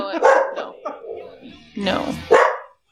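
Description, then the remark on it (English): A dog barks several times in quick, uneven bursts, loud, with a few harsh, yelping barks bunched together near the end. “Even a dog bark can't stop the rock.”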